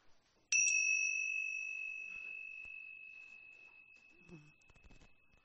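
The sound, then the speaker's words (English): A single bright chime is struck once, rung as the second chime for all the sorrows among those present, and rings out clearly, its sustained metallic tone slowly fading over several seconds with faint background noises beneath it. “We ring the second chime for all the sorrows among us, for the loss of loved ones, a family, of friends, a dear animal, the loss of a possibility.”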